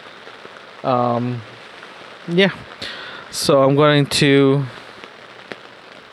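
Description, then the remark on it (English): Steady rain patters on a tent, a constant hiss with scattered drop taps running the whole time while a man speaks a few short phrases over it. “listen to the rain.”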